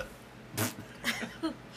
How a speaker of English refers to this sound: Burping on the show again, are we? Well, take a drink of soda. It happens. It happens.